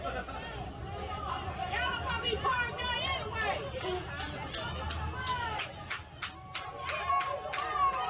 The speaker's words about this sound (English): The people you hear are on the boat. The young man in the life jacket works for the same company.